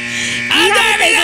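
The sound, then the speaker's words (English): A flat, steady electric buzzer drones for about half a second during a call-in guessing game, then cuts off as a lively voice breaks in with rising and falling exclamations. “Look at the buzzer went off there.”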